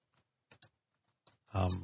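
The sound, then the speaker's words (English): A handful of sparse, light computer keyboard keystrokes click irregularly, followed by a person starting to speak over the tail end. “Hey, who's typing? Knock off the typing.”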